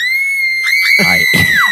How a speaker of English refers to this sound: Not quite sure what to do at the moment, I spin around to the sound of a posse of screaming women.